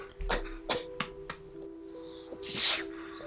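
A single sharp, hissy sneeze bursts out near the end, louder than anything before it, following a few soft clicks and taps over a faint steady hum.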